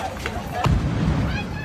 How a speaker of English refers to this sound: Social media footage showed people running from the scene and recorded at least one explosion.